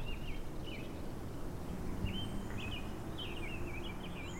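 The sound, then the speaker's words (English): Birds chirp and warble in short, repeated phrases over a steady low rumble of outdoor background noise on quiet, not-so-busy city streets in Kansas City in spring 2020, with no one talking. “Maybe it's just because it's spring and I'm home more now, but did the birds seem louder recently?”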